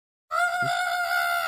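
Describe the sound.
A voice imitates a small creature's scream: one loud, shrill, sustained squawk that starts abruptly after a brief silence and holds steady, with nothing else around it.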